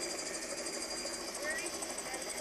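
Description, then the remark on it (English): Helicopters, heard on an old grainy VHS home video, drone steadily throughout, a dense mechanical roar with a fast, even chopping pulse running through it, loud and unbroken across the whole short stretch. “What you hear is helicopters.”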